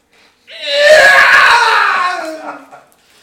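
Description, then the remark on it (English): A single loud, strained scream from a human voice imitating the Wilhelm scream, the classic movie death yell, rising sharply and then trailing downward over about two seconds. “Can we get a Wilhelm scream, please?”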